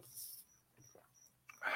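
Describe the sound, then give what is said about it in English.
A faint cricket chirps in a studio in short, high-pitched bursts at a steady pace, with a few soft rustles and a brief louder hiss near the end. “I'd like to thank our friend the cricket for joining us tonight, by the way, in the studio.”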